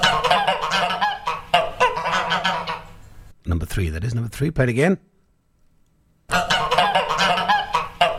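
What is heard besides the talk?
geese honking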